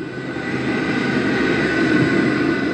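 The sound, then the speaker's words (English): A loud, steady roar of a New York City subway train rushing through a tunnel, filmed from the top of the train, a dense rumbling wash with a hissing high edge that holds constant throughout, with no voices. “This sound is from a video of a subway train roaring through a tunnel, except it's filmed from a place most riders will never see, the top of a train.”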